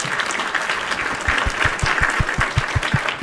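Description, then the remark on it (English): A burst of crowd applause from a sound-effect button, dense clapping filling the whole stretch with steady, even loudness, with a few low thumps recurring underneath. Canned. “Give a round of applause button.”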